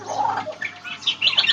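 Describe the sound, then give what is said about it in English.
An Australian magpie in a tree mimicking other birds, running through a quick, varied string of gurgling warbles and higher chirps, clear with no talking. “It's mimicking the sounds of other birds, just like the lyrebird does.”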